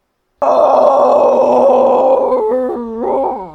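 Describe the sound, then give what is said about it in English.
An actor playing the Lion imitates a lion's roar with his voice: one loud, rough, sustained bellow lasting about three seconds, breaking at the end into a few wavering, falling growls. “Well roared, lion.”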